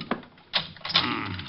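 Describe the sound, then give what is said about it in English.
An office door lock being worked to lock the door again: a sharp click, then a scraping metallic turn and a longer grinding rattle of the mechanism, moderately loud with no voices. “Just locking the door again.”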